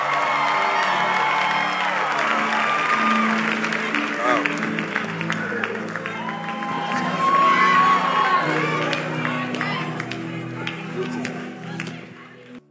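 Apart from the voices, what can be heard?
audience clapping and cheering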